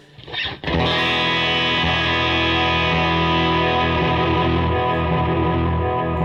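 An electric guitar plays sustained, distorted chords through a Sonicake Levitate delay pedal, with a Siren Pedals compressor and a Sonicake EQ also on, the notes smearing into repeating echoes and a dense, ringing wash after a brief opening strum.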